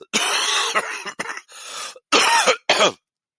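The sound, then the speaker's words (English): A person who is ill coughs in a harsh, chesty fit, several rough bursts in a row with brief pauses between them, loud with no talking. “I have a horrible, nasty cough.”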